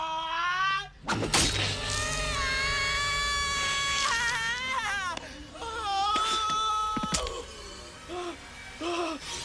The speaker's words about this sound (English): He screamed like a girl.